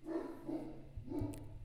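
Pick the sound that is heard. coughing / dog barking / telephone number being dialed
dog barking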